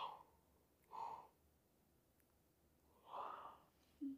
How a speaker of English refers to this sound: Big yawn.